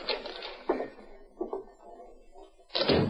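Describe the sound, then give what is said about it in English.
Several firm knocks on a door come in uneven bursts, loud, each thud trailing off into an echo. No one speaks. “Jim Carson heard the knock for which he was waiting”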